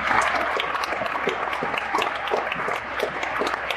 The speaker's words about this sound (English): That's why I ask all of you, are you excited today? If you're excited, give yourself another round of applause.